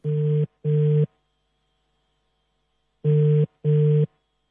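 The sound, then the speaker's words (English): A telephone ringback tone sounds clearly on its own: two short buzzy rings, a pause of about two seconds, then two more rings, as an outgoing call goes unanswered and reaches a voicemail service. “Reached the voicemail line service. Okay, so it's the second time we're trying Dimakatso. Actually, not getting through to her.”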